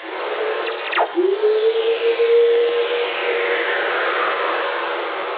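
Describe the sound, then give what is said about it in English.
Earth whistlers, radio waves released into space by lightning strikes: a steady hiss carries a few sharp crackles, then a pure tone sweeps downward and glides slowly lower, fading out while faint falling streaks trail through the static. “Well, the sound lightning makes in outer space. When lightning strikes down here, it releases all these radio waves out into the cosmos.”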